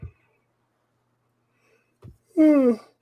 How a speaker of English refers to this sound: Oh, sorry, God. I don't know where these yawns are coming from. I'm not tired.